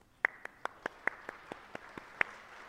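Applause from the audience comes through as a sparse, steady run of about ten sharp handclaps, evenly paced and fairly soft, with no voices over them.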